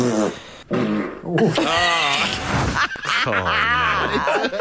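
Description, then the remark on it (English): A loud, close run of fart noises: several brassy, buzzing blasts in a row, the longer ones bending up and down in pitch and sputtering out, with no talking. “So they guess first, and then you hear the actual windy pop.”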